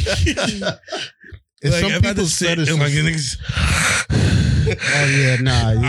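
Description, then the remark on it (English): Exaggerated heavy breathing: loud, drawn-out huffs and gasps with a groaning, voiced edge, running almost continuously after a brief pause near the start. “We both can't be sitting here breathing like that.”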